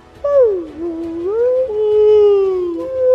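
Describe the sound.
A person lets out a long, wavering howl imitating a Bigfoot call, dipping in pitch, then holding a steady moaning tone for about three seconds, loud with no talking.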